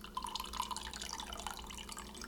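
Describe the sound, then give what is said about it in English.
Liquid drips slowly and softly, a handful of small irregular drops landing against a faint background hiss, with no voices. “It only dripped like 2 drops.”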